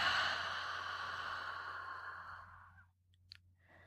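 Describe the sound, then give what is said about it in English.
A long, steady breath blown out through the mouth after three quick sniffs in a breathing exercise, a soft airy hiss that fades gradually over about three seconds, followed by a faint click near the end. “And a long exhale.”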